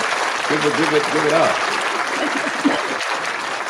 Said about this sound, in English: And which that deserves a round of applause,